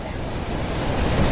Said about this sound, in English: And it's nice to see the waves this big. Nice to see all the surfers out here. Look at that. Isn't that crazy?